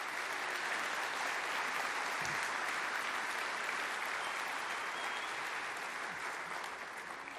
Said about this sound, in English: So give all of our mothers a big round of applause.